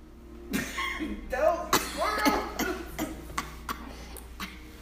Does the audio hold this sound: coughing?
yes